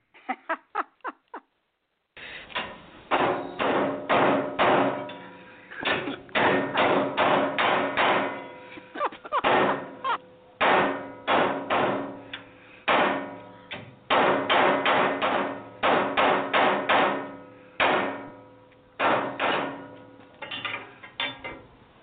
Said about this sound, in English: it doesn't want to slide in like it should. Hey, reach over there and hand me that ball peen hammer over there. I'll show you how to get it in.